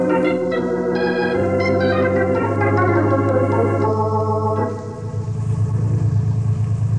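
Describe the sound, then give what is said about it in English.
Car engines rumble and run steadily outside as the cars are got ready, a loud continuous low drone with rising and falling tones, dipping briefly near the end before picking back up. No one speaks. “Let's get outside and get the cars ready.”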